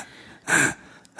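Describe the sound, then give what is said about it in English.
A voice mimics a man's heavy panting, with one loud, breathy huff and the start of a second breath at the very end. The sound is airy, with no speech. “And he would be breathing very heavily.”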